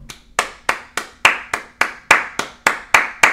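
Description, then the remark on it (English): Applause in the form of steady, evenly spaced hand claps, about ten crisp, sharp slaps in a row at a brisk, regular beat, with no voices. “This is us applauding.”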